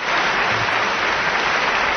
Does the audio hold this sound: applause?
yes